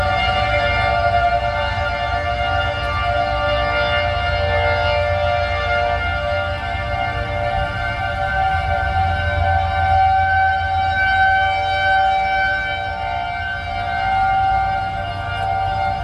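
Tornado warning sirens in Nebraska wail steadily across the whole stretch, a sustained droning tone with layered harmonics, echoing over a low rumbling background, with no voices.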